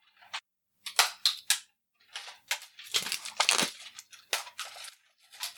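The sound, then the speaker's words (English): A plastic case, already smashed in half with a hammer, is cracked back and pried open in a series of sharp snaps and crackling bursts, irregularly spaced, with brief pauses between and no voices. “And now we're going to get an extra piece of audio. We're going to crack this back.”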